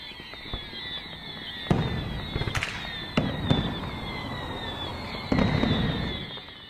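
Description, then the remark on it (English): Fireworks bang and crackle, a handful of sharp booms spaced irregularly over a steady hiss and rumble of crowd-like background noise, with no voices standing out. “Don't worry if you still want to see and hear some things going boom.”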